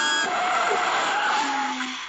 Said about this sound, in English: Air brakes.